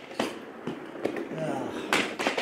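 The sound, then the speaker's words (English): A chair is pushed in against a desk, making several light knocks and a soft scrape rather than a hard slam, with faint murmuring in the background. “That was just, you just pushed it in. It didn't slam the thing like it normally does.”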